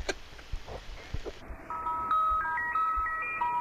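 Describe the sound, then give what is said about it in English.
An ice cream truck jingle plays a tinny, chiming melody of bright repeating notes, entering after a second of hissy background noise and carrying steadily at moderate volume. “Ice cream truck.”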